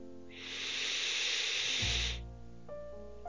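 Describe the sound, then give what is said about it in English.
A steady rush of flowing waterfall water swells up as a broad hiss for about two seconds, then fades, leaving soft sustained musical tones that hum beneath it and carry on alone. “Repeat those to yourself in your head as you continue to breathe in time with the flowing water of the waterfall.”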